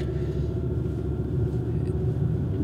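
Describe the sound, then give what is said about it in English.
Steady low rumble from inside a car driving towards Harborview School, a continuous dull roar of engine and road noise with no voices, constant and fairly loud throughout. “I'm in my car heading towards Harborview School.”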